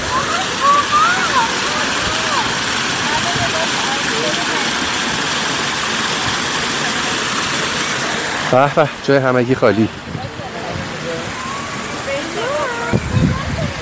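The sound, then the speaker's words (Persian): A steady, loud rush of falling water from an artificial waterfall fills the scene, with a man's voice briefly speaking over the splashing near the end. “خب یکم جلوترش یک آبشار مصنوعی هستش که الان میام کنار شما این صدا رو بشنوید و یکم لذت ببرید.”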